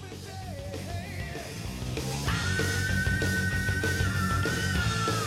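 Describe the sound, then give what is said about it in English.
A rock singer belts out a long, high sustained scream that rises out of a loud, dense band mix and holds steady for several seconds. “Good scream.”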